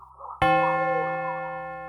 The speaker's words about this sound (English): As the second chime rings, there's a shuffling sound.